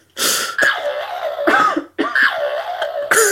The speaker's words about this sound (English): You gotta cough a little bit and then stop.